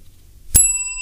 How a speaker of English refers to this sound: And how good was that bell?